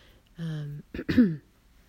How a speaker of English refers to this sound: Got a bit of a sore throat, so I'm trying to clear my throat.